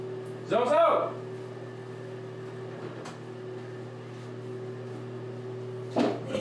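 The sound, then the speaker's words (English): A bathroom door creaks open with a short, wavering hinge squeal, followed later by a faint click and a soft thump, all over a steady mechanical hum like a fan. “Open the door, lady.”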